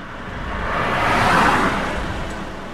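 Cars pass both ways along the side of a not very busy road in Connecticut, a broad whoosh of tire and engine noise swelling to a peak mid-clip and easing off again, with steady traffic rumble and no voices.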